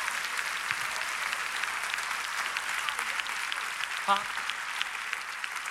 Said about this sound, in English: Yes. Clap your hands if you received that this morning.